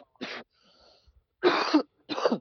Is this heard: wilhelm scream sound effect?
no